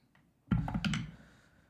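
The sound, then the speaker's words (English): Glass dice are rolled across a tabletop for a knowledge arcana check in a quick burst of sharp, bright clicks and knocks that fade out within a second, with no voices; the roll comes up 14. “And that is, oh God, why did I buy glass dice? that is a 14.”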